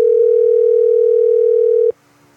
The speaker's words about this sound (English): Come on, Danny, pick up the phone.